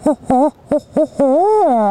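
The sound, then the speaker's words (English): A person mimics an owl's hooting call with their voice in a field: a few short, wavering hoots in quick succession, then one long drawn-out hoot that rises and falls, loud with no talking. “I'm like, hey, guys, I'm going to rip a quick owl call. Do it with my voice.”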